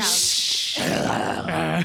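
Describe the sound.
A person imitates the growl Odin gives Loki in the movie: a harsh, breathy rasp that shifts into a rough, throaty rumble, loud and lasting about two seconds.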